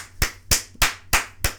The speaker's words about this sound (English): Yes. You heard of him in my clap. I'm so happy. I know, I can hear it. Yeah, that's so not happy. A happy clap. That's a spiteful clap.